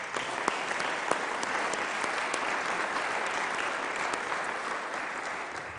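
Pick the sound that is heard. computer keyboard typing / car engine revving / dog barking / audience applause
audience applause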